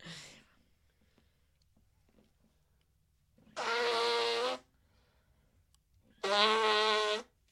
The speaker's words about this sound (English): Let me mute this real quick. I got to blow my honker, and then we'll get out of here.